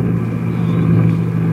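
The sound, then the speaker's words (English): A rocket ship's jet brakes roar loudly and steadily, belching fire as it comes down to land on a field, a deep rumble with a constant low droning hum and no voices. “Her jet brakes belching fire. She's right over the field now. She's coming down.”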